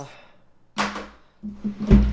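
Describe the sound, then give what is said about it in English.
A drawer scrapes along its runners, then rolls again and is slammed shut with a heavy, thudding bang at the end, the loudest moment of the short sequence. “A loud slam of my drawer to signify the closing.”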